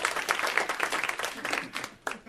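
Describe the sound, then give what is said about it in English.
A brief burst of applause from a small comedy show audience, clapping for the comedian's girlfriend: many hands clapping in a dense, uneven patter that thins out toward the end with a few last claps. “So round of applause for my girlfriend.”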